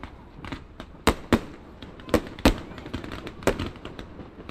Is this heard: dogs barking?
no